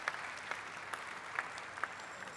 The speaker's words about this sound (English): Now, that's where you need to applaud right there.